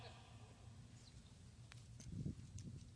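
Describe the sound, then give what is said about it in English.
A few heavy, dull stomps land on a wadded-up, crumpled paper bill on the ground, with a faint rustle between the thuds against a low background hum. “And while I'm at it, I can take this and I can wad it all up, crinkle it up, smash it, abuse it, spit on it, throw it on the ground. I can stomp on it.”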